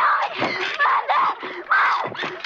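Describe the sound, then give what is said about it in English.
A woman screams in pain during a film shoot, loud, in a series of strained, wavering cries with brief catches of breath between them, alone without other talk. “She started screaming.”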